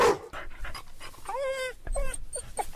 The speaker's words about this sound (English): Let's hear the dog one more time, finding that penis.